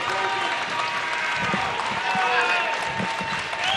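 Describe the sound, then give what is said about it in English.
The Charlotte Catholic crowd cheers and claps steadily in the stands at a basketball game against Marvin Ridge, a loud, dense wash of voices and applause that holds without pause for the whole stretch. “You can hear that Charlotte Catholic crowd.”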